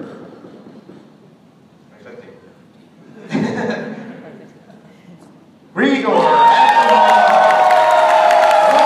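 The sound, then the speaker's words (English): A crowd murmurs at first, then at about six seconds erupts into loud, sustained applause and cheering with shrill whoops and whistles riding over the clapping, as the 2016 caricature artist of the year is announced. “This applause goes on forever, so we're going to skip ahead just a little bit.”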